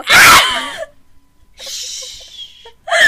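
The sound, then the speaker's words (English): A man lets out a sudden, loud, wet sneeze that fades quickly. It is followed by a breathy, hissing exhale and the start of another sharp burst at the end. “He literally just sneezed and it sounds so wet.”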